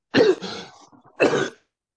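Two harsh, throaty coughing bursts in a coughing attack, the first longer and rasping, followed after a short pause by a second sharp cough, with no speech.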